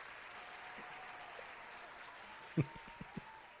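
crowd, round of applause

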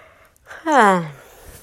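human body sound, yawning

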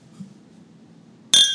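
household object, glasses clinking

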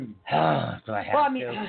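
human body sound, throat clearing

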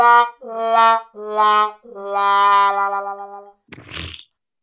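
sound effect, fart sound effect

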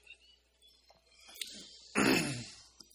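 human body sound, cough

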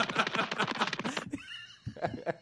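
animal, horse neighing

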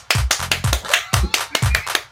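human body sound, hands clapping

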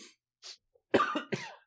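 human body sound, coughing

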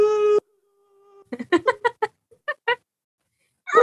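animal, cat meowing

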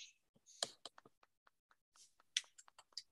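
human body sound, soft golf clap

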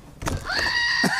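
animal, goat bleating

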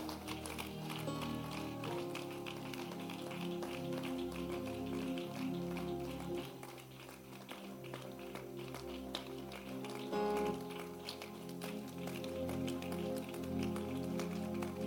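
crowd, audience clapping hands

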